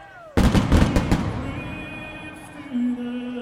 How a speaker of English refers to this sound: And then, of course, I'm 20 feet from the pyro. So that moment comes and the pyro goes.